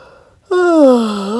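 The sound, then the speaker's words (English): A single drawn-out voiced yawn, loud, starting abruptly and sliding slowly downward in pitch for about a second; a human voice acting out the yawn of the character Sammy in a narrated story. “Well, Sammy yawned.”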